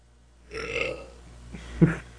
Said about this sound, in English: I thought that it was a big, delicious belch. That was not big. No. It sounded comfortable. It was comfortable. And nice. Yeah. Not so much on the delicious, but also not undelicious.